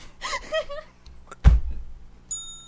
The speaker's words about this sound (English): I have a bell. Oh, well, that's beautiful.